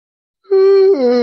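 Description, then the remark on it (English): A single drawn-out, voiced yawn that starts abruptly after a brief silence, holds a steady tone, then drops to a lower, groaning pitch for its final half. “There's a yawn, as mentioned.”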